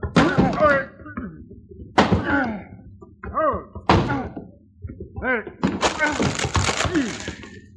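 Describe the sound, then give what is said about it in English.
Heavy, repeated bangs on a wooden closet door from someone locked inside, roughly four forceful blows spaced a couple of seconds apart, loud, with strained vocal sounds mixed in between the impacts. “Someone's banging on that closet door, Chad.”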